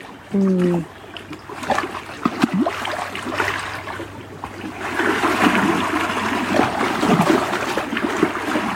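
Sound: trickling stream water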